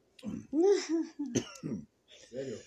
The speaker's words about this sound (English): You just coughed on me.